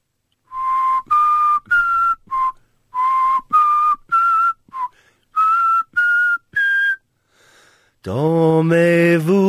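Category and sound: human body sound, person whistling a tune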